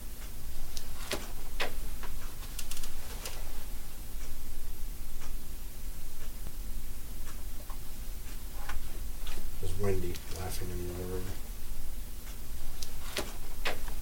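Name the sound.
wall clock ticking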